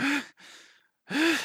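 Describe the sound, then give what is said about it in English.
A voice imitates wheezy breathing: two loud, rough, strained breaths with a slight whistling whine, separated by a softer, airy exhale, with no talking. “So wheezy means to make a high, rough sound while breathing because of some breathing difficulty.”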